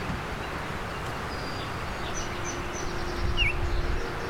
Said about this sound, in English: Still don't see this bird, but he's loud.